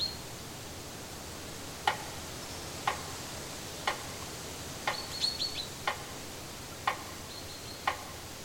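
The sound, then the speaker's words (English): A metronome set to 60 beats per minute for a breathing technique ticks steadily at one beat per second, seven sharp clicks in a row, while faint high bird chirps from nature sounds play softly in the background. No one speaks. “Once again, I will use a metronome, as in the 1-2 breathing technique, and I will set it to a pulse of 60 beats per minute.”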